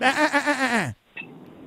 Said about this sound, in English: That was my lamb sound effect. I don't know if that's really lamb. Yeah. Or a ram.